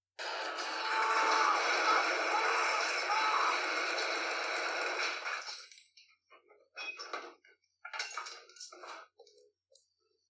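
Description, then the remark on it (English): A recorded scream of a person being shot: a loud, harsh scream holds steady for about six seconds, raw and shrill, then breaks off into several shorter, ragged bursts of sound separated by brief silences. “Now, I can't show you because you're listening to this, but you can listen to the recorded scream.”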